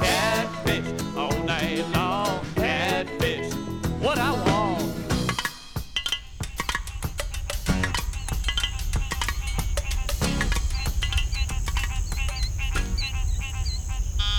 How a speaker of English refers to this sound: When the sun goes down in the Mississippi Delta, the frogs sound the warning that the bugs are taking over.